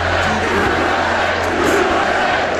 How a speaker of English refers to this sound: So the crowd is really... The president's at the podium now. The POTUS. Crowd's starting to chant USA.